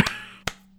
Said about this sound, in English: I'm gonna give a little clap for the Wise Men.